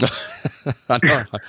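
A person coughs several times in a quick, uneven series of harsh bursts, fairly loud, with a longer rasping cough near the end.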